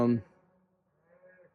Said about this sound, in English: listening to the cows right now.